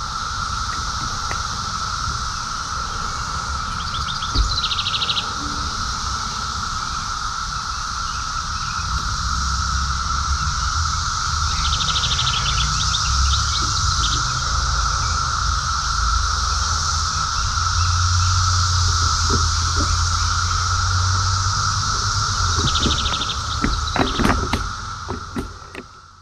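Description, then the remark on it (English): A dense chorus of cicadas drones steadily in stands of trees during the daytime in Arlington, Virginia, on the US East Coast, heard on a tandem ride. An unbroken, shimmering hum holds at a constant level throughout, with faint low rumbles and occasional rustles beneath it. “to listen to the cicadas. They are humming steadily during the daytime anywhere in the middle part of the East Coast where there are stands of trees.”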